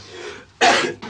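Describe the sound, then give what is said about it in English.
A soft, breathy inhale builds up, then a single loud, explosive sneeze bursts out, followed by a brief trailing gasp. “Gesundheit.”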